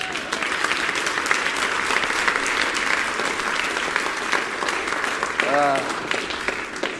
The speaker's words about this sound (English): And on this Father's Day, I think that we should give the Lord a big hand applause.